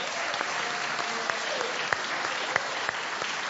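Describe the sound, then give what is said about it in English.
An audience applauds steadily for a gift-wrapped present held up for everyone to see, a dense wash of many hands clapping at once with a few sharper individual claps popping out, moderately loud and continuous throughout. “Can we have a clap for this?”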